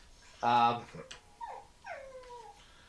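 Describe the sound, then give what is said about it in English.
A male dog gives one loud, harmonic yelp, followed by two drawn-out whines that slide downward in pitch, with no one talking. “What am I going to do with this dog?”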